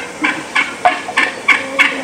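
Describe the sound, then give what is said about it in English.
Seven or eight wild turkey gobblers gobble in a quick run of rattling, throaty bursts, about seven in two seconds, fairly loud, with no one talking. “I think there was 7 or 8 gobblers.”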